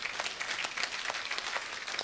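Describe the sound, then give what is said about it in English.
A church audience claps in sustained, dense applause for the baptism of 110 people within 24 hours, many hands beating at once in an even, bright wash of claps with no voices standing out. “Yeah, you can clap.”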